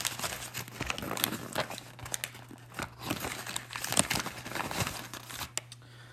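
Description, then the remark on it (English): Crinkly plastic and paper wrapping rustles and crackles steadily for several seconds as a Chick-fil-A chicken sandwich package is torn open, with irregular sharp crunches and a low steady hum underneath. “So I'm going to open up the packaging now and we'll see what's inside the chicken sandwich.”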